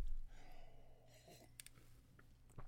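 A quiet sip of orange juice, a soft breathy slurp followed by a few small wet mouth clicks and a swallow, ending in a short louder knock as the glass is set down.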